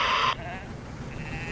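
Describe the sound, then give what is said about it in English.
A sheep aboard a ship lets out a single short, loud bleat right at the start, then fades into a quieter, faintly wavering tail over low background noise. “We need to get the sheep to stand in the middle of the ship.”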